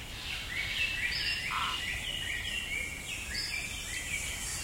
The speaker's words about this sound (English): Imagine a tropical rainforest. During the day, it's a pointillist painting in every shade of green, flecked with tiny shafts of light that somehow penetrate the layers of leaves.